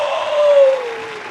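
A brief burst of canned applause from a soundboard: dense, steady clapping for just over a second, fairly loud, with a faint tone gliding slowly downward beneath it.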